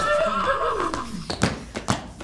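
A horse lets out a loud whinny that wavers and falls in pitch, followed by a couple of sharp snorting bursts as it trails off.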